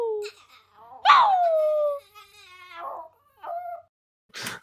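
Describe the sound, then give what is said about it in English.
A person gives a loud, drawn-out imitation of a howl, its pitch sliding downward for about a second, followed by a few shorter, quieter vocal sounds and a brief noisy burst. “There you go, Eddie. I give you a howl”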